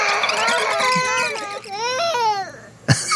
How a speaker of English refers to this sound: Because the sound of screaming children and mama just stresses me out immediately, even if it's not my kid. A year ago, the crying one was the key one. Now it's the mama, mama, mama.